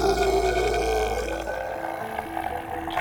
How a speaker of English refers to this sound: But the creature roars even louder.